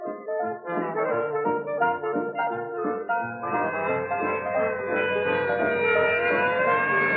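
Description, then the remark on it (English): The siren of an ambulance heading for General Hospital wails steadily and loudly with rich, sustained tones, starting in a choppy pulsing pattern before settling into a long continuous cry with no voices. “An ambulance heading for General Hospital and not a minute to lose.”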